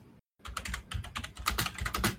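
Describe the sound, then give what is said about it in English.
Rapid, uneven clacking of computer keyboard keys close to the microphone, a dense flurry of keystrokes after a brief pause, with no voices. “Jesus Christ, are you molesting that fucking keyboard? It's just so close to the mic.”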